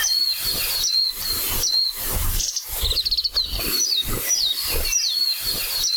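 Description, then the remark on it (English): A Japanese white-eye (mejiro) sings a rapid, high-pitched warbling song of thin slurred notes and quick twittering trills, continuous, over a steady background hiss with no voices. “the warbling call of the Majiro, or the Japanese wide-eyed bird.”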